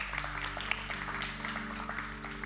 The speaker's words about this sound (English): Please stand for the benediction. You can clap when you stand. You don't have to, but you can if you want.